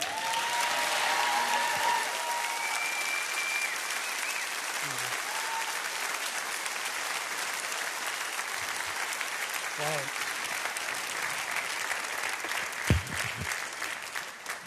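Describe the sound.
Sustained applause from an audience fills the whole stretch, a dense, steady wash of clapping at fairly even loudness, with a few brief voices and a sharper sound surfacing near the end.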